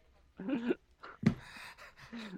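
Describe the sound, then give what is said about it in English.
Heavy, raspy breathing into the microphone, a few voiced, panting breaths with a sharp click in the middle, followed by a longer breathy exhale. “Who is this calling the bat cave, and why are you breathing heavily and clicking?”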